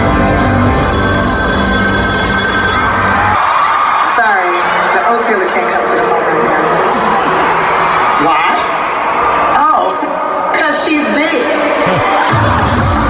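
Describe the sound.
A telephone rings repeatedly within a loud, dense music track at a live concert on a huge stage, in the part of the song where comedian Tiffany Haddish answers the phone. Its bright trilling bursts cut through the mix while voices and crowd noise carry on underneath.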